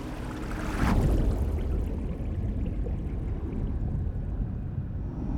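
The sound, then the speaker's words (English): Water rushes and pours steadily as divers slip out of a diving bell through a hatch into the dark, frigid water of the North Sea: a dense, churning wash with a louder splashing surge near the start that settles into a continuous low streaming roar. No voices. “Chris and Dave exit via a hatch, slipping out of the bell and into the dark, frigid water of the North Sea.”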